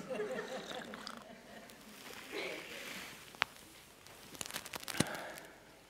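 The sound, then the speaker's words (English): Soft, wet slurping of someone sipping tea, fairly quiet, followed by a couple of sharp little clicks and light clinks toward the end. “Just remembered Carl got me a tea, and I need to honour him by having a sip.”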